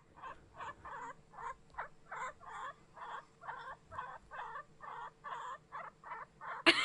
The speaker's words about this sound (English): But like, listen to the guinea pig. So if you've ever wanted to listen to a guinea pig. Guinea pig sounds, guys.